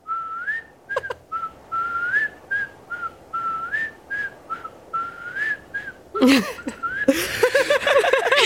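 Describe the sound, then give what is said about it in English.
A person demonstrates a whistle, a long, wavering tune of repeated rising and falling notes, clear, running for several seconds before breaking into laughter near the end. “Could you demonstrate what the whistle sounds like?”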